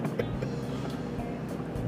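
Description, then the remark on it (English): A steady, low engine-and-road rumble fills the space, the muffled droning hum of riding inside a moving car, holding an even level throughout with no clear speech. “We are doing another car cast, but with a buddy.”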